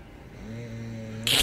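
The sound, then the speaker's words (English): A man snores once: a low, buzzing drone holds steady for about a second, then breaks into a short, harsh, noisy snort. No one speaks. “Yes, you did, and we have audio of you snoring.”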